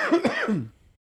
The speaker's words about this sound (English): By the way, this cough is starting to get a little better. Lingering Omicron.